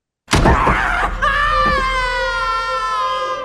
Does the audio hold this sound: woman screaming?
yes